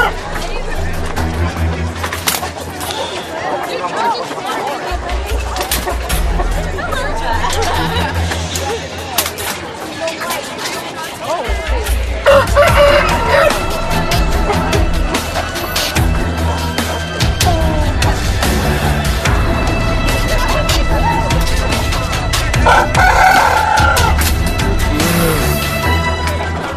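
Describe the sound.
Roosters crow and cluck in a cockfight between Cindelaras's rooster and the royal rooster at King Raden Putra's palace, amid a loud, continuous crowd hubbub, with a dense jumble of shouting voices and scuffling that grows busier about halfway through.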